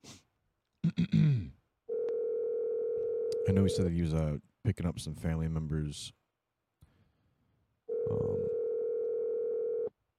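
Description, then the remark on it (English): A steady electronic ringback tone of an outgoing phone call sounds twice, each burst about two seconds long with a pause between, fairly loud, while a man talks briefly before and between the rings. “So I apologize for the ringing.”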